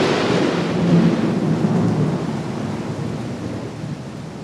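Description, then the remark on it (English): A deep, rolling rumble of thunder swells and slowly fades over a steady wash of heavy rain. The storm is loud and continuous, with no voices. “The missing persons case that brought them to this desolate land is quickly forgotten as the storm clouds their senses.”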